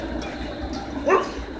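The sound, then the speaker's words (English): A single short, high-pitched puppy yip rises briefly out of a steady low background hum, with no other voices. “Hello, puppy.”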